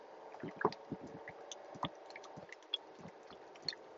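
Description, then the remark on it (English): Wet gulping of water as a person takes another drink, with several irregular swallows and small squishy mouth clicks over about four seconds, quiet overall and with no talking. “I'm sorry, just took another drink of water. And I'm going to take another.”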